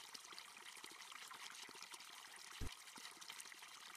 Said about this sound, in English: He knew the symbolic value of water and would explain it to me when we walked by a fountain just like this one.